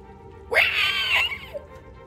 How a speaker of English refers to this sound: From down the hall, you hear the keening of the hungry kobold.